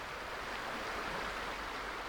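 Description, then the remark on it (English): A steady, unbroken rush of flowing river water, the Water of Leith in Edinburgh, fills the whole stretch, fairly loud, with no voices or other sounds cutting through. “So we're back beside the very photogenic water of Leith”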